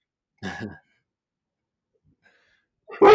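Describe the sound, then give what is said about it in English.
A dog barks twice, a short sharp bark followed by a long silent pause and then a louder bark cut off at the end. No one speaks. “We have dogs on the show.”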